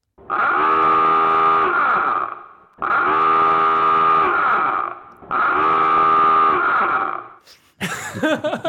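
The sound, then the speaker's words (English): A submarine dive alarm blares three times, each a loud, buzzing, harmonically rich klaxon honk lasting about two seconds, separated by short gaps, followed by a brief burst of different sound. “That is a dive alarm for a submarine.”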